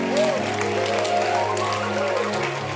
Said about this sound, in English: Please clap your hands.